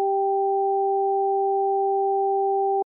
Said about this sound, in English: I switched the headphones around, and it made no difference to what I perceived. The high tones remained in my right ear, and the low tones remained in my left ear.